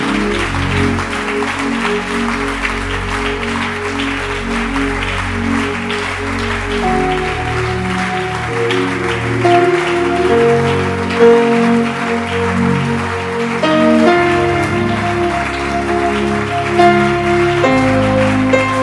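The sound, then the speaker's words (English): A crowd claps steadily and continuously, a loud dense patter that never lets up, while sustained musical chords and shifting low notes play underneath. No one speaks. “Don't stop clapping.”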